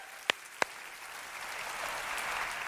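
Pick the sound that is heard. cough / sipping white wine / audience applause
audience applause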